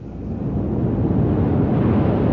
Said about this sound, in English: It's the tide. It comes in faster than an express train. Is it always like this? Twice a day.